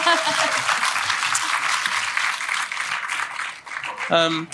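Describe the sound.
A crowd applauds steadily for several seconds, a dense, fairly loud wash of clapping, with a voice briefly cutting in over it near the end.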